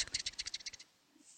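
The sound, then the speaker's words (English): A quick run of about a dozen dry, rhythmic scratching strokes as someone draws on paper, like a pen or pencil rubbing back and forth, fairly soft, then it stops into near silence. “Can you actually hear the sound of me like scratching on the paper?”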